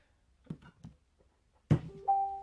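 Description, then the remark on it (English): A laptop notification sound: after a few faint soft knocks, a sharp thump gives way to a steady two-note electronic chime, one low tone and one higher, held clearly to the end. “It's your laptop making fucking noises.”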